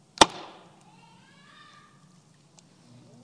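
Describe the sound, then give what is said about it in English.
A potter slams a lump of clay down onto a potter's wheel to try centering it again, one sharp, loud slap, then a faint steady whir and a quiet tick later on. “So now I'm going to be the potter whose pot was marred in his hands. And I'm going to try again. I'm going to slam him down.”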